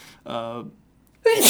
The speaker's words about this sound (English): Nope, I didn't want to sneeze over your audio because that sneeze is going to have to get cut out because of the spike.